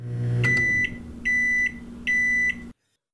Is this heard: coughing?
no